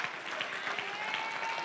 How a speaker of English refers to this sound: Listen, y'all. Don't give me that old golf clap. Give me a clap that's worthy of his name.